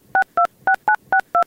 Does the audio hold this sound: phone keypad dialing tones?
yes